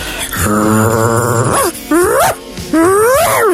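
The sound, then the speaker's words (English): A person imitates a dog barking, starting with a long drawn-out groaning howl followed by two rising, yelping bark-like calls, loud with no other talking. “But, so if you just bark like a dog.”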